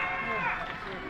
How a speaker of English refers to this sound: That looks like Huma Abedin right there. Anthony Weiner's wife. And there's Hillary Clinton. They're booing her? And they are booing her. Yeah, those are some, a lot of boos.